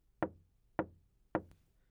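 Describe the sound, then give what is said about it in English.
Three soft, evenly spaced knocks on a solid surface, each with a brief resonant decay, heard alone against near silence. “A gentle knocking triplet echoed through the air as if to say, "Hello."”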